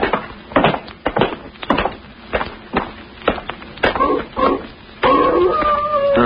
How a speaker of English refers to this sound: What's that? Sounds like a wolf. That ain't what the wolves sound like down in California. You're thinking of the Hollywood kind. This is the real McCoy.